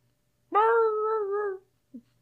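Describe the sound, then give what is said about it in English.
A person imitates a dog's whimper with one drawn-out, steady, high whine lasting about a second, fairly loud, followed by a brief faint squeak. No one speaks. “That was me.”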